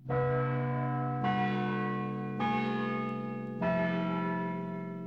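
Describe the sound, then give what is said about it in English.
Large church bells of St. Patrick's Cathedral in Cavan ring out four slow, resonant strikes at a steady pace at 6 o'clock, each one's deep humming tone overlapping the last as it fades. Loud, no voices. “It's 6 o'clock, and those were the chimes of St. Patrick's Cathedral, Cavan.”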